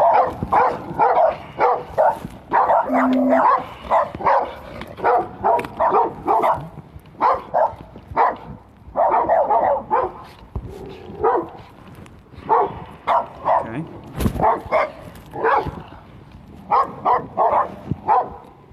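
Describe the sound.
Two dogs bark repeatedly in quick, uneven bursts as they run at a man, loud, with some yipping mixed in; a person briefly speaks near the start.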